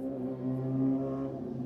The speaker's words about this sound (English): And that was a scooter that drove by our studio. Yeah, that's the weirdest scooter I've seen.